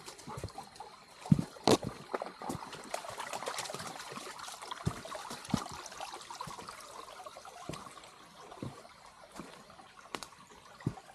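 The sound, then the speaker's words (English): A small stream trickles and babbles at a trail crossing, a steady watery texture broken by a few sharp splashes or clicks, with no one speaking. “There are lots of these little stream crossings, which nice because my dog can get a drink.”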